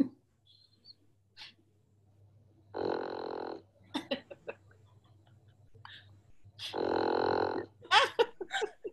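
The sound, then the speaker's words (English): A bulldog snores loudly, two long rasping breaths a few seconds apart, each followed by short snorts and snuffles, over a faint steady hum. “the bulldog snoring through all the Zoom meetings through quarantine.”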